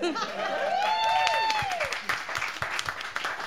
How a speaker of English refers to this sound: Round of applause for the cradles.